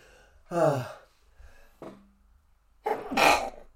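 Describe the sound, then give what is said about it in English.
A voiced gasping intake of breath, a short pause, then one loud, explosive sneeze with a harsh, breathy burst. No talking. “I'm going to itch and I'm going to probably sneeze here in a second.”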